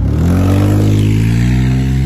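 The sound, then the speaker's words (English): The overheating engine of a Dodge Durango revs loudly on a June summer day at an AutoZone, its low harmonic roar rising steadily in pitch over a couple of seconds with no voices. “I didn't realize it was so loud. It's overheating, dude. It's a Dodge.”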